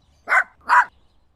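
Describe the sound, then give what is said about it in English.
A dog barks twice in quick succession, two sharp, loud woofs with a brief pause between them, against a quiet background. “And then he notices the crows laughing. He starts barking again.”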